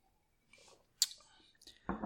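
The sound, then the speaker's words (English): A quiet sip of an alcoholic drink: a soft slurp, a sharp mouth or glass click, and faint swallowing noises, with a voice starting up right at the end. “Little sip and let's hit this.”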